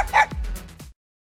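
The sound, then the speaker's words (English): A few sharp dog barks and high yips come in quick succession, fairly loud, lasting under a second before cutting off into silence. “And why these dogs are recreating her most iconic roles.”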